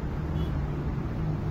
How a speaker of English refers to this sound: It shows a woman putting up a protest banner on a billboard over a highway in Iran. The traffic roars below her as she balances on the billboard scaffolding.